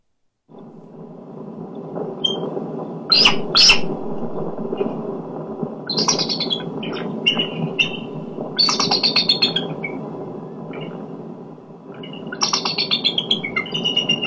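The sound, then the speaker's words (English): A bald eagle lets out high, thin chittering screeches in several separate bursts, some with rapid stuttering notes, heard over a constant low rumble of wind or background noise. “Brian says that's the bald eagle.”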